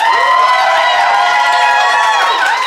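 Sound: audience applause and cheering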